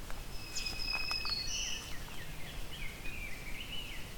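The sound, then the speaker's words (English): Woodland birdsong from a black-throated green warbler and an eastern wood-pewee: thin, high whistled phrases and slurred notes, fairly faint, over a soft steady outdoor background with no talking. “I'm hearing black-throated green warbler, eastern woodpewee.”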